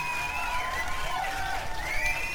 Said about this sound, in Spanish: Un aplauso al Doom Eternal.